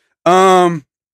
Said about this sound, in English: Hey, whoa. Don't you yawn at me. Do not yawn at me.